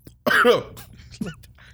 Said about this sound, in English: Cough.